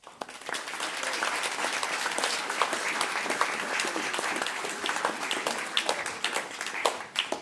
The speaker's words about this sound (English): You have done wonderfully, wonderfully, wonderfully well. We're going to give you another little round of applause.